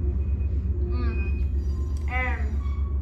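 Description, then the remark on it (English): A trolley train rumbles steadily with a deep, continuous low drone, broken twice by brief high, tonal squeals, the second one louder. “I don't appreciate these sounds coming from the train.”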